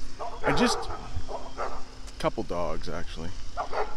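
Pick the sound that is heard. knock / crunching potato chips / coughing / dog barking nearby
dog barking nearby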